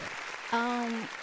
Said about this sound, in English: Hey, let me get a hand clap. Yeah. Let's go.